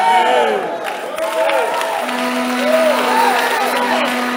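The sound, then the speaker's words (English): An audience cheering loudly and clapping to give the Lord praise, many voices whooping and calling in overlapping rising and falling shouts, with scattered clapping underneath and a steady low sustained note entering partway through. “I am waiting for you to clap better and give the Lord some praise”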